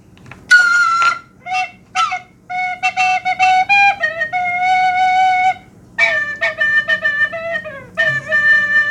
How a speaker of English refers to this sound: I could try and play us an outro theme on my tin whistle to see if I do any better.